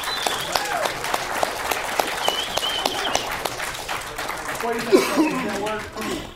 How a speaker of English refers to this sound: So if you would, give us a big round of applause for